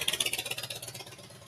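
A Harley-Davidson motorcycle engine rumbles with a steady, rapid pulsing throb, then eases slightly in loudness as it continues, with no voices over it.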